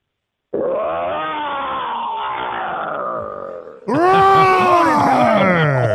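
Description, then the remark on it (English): Two people take turns imitating a lion's roar: a long, gravelly growl of about three seconds, then a louder, higher roar that sweeps downward in pitch. Both are loud. “Dueling roar.”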